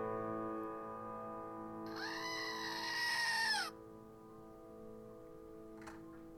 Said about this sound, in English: Can you hear the real goats right now?